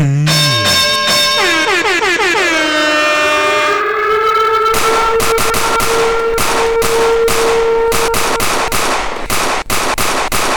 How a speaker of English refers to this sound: And it just fit perfect with the gunshot.